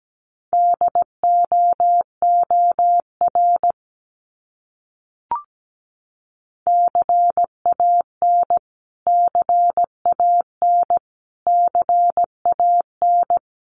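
Morse code keyed at a steady 17 words per minute, sending common English words from a list of the top 300 words, each repeated: a clear, mid-pitched tone beeps in short and long pulses, grouped into letters, with a pause and a single soft click between words.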